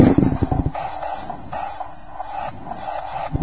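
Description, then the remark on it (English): A pinball machine's knocker fires in a quick run of sharp mechanical clacks for 26 won replays after all the arrows in the special area are lit, followed by a steady, rhythmic whirring and clicking of the machine's mechanism, with no voices. “Knocked off all the credits when I got all the arrows lit.”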